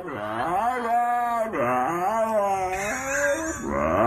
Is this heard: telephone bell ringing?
no